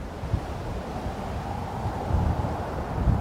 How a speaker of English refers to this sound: Let's deconstruct the soundtrack and explain these audio layers. First up, the ambience, which are sometimes called the backgrounds.